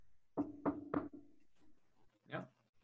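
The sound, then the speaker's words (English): Three sharp, evenly spaced knocks on the door of a room downstairs, fairly loud, followed by a brief pause and a softer muffled sound, like a voice or movement behind it. “I presume knocking on the door?”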